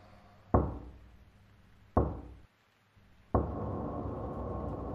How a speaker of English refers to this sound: The black-headed man walks towards the door of the monastery and knocks thrice.